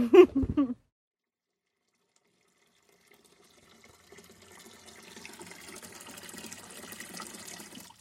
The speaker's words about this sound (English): Looks like we've had the tiniest bit of rain in the night, so just getting some water from the water butt to water in the greenhouse.